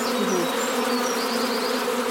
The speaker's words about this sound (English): Look, a lot of them have gone on to there. Mm. What I need to do is get, there's still a few bees in the nuke. Yeah. And I just need to keep getting them, try and get them out. So I'm going to give them another bit of a shake.